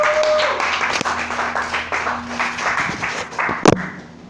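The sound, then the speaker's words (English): An audience at a stand-up comedy show claps steadily for about four seconds as a comedian comes to the stage, a dense, sustained wash of applause. A brief high tone sounds at the start, and a sharp thump lands near the end. “Clap it up for him!”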